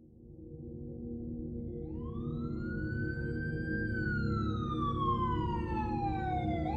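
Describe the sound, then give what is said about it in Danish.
A loud police siren wails in Vesterbro, Copenhagen, in November 1996, its tone sweeping up slowly, holding, then gliding back down over a steady low rumble of engine or traffic noise, with no one speaking. “Den 13. november 1996 vågnede beboerne på Vesterbro i København op til hylende sirener.”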